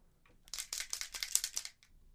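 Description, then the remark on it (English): Quick, scratchy strokes of a dried-out pen rasp across paper in a rapid burst of about a dozen short scribbles, fairly quiet, with no voices. “Why do these pens go out like crazy?”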